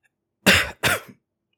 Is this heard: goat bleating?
no